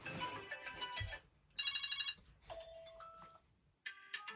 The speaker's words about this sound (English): When someone has it as their ringtone for their phone call, and it's my waking up alarm. Like, oh, my heart gets so me. This is the default. That's actually my alarm.